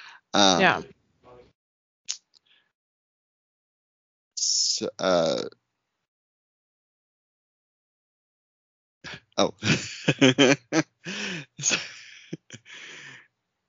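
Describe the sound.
A short sharp sneeze bursts out between quiet stretches, a breathy voiced sound before it and a brief run of muffled voice after.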